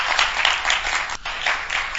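A crowd applauds an audience member's question at a question-and-answer session with a steady, dense wash of clapping that briefly dips near the middle, then swells again at the same fairly loud level. No voices are heard.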